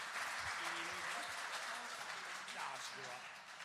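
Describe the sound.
A church audience claps in a steady round of applause as a departing member comes up to speak for the last time, a dense continuous patter of many hands that holds for several seconds, with a few low murmuring voices underneath.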